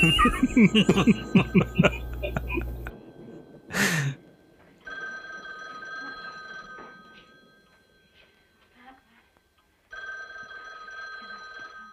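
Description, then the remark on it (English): A telephone rings in two long, steady electronic bursts separated by a pause, coming after a stretch of chuckling laughter and a brief sharp noise. “Oh, phone is ringing.”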